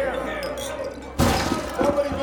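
Glasses clink together in a hotel during a toast to Congressman Yancey, a sudden bright burst of chiming contact followed by a few scattered clinks, with a low murmur of voices and room noise around it.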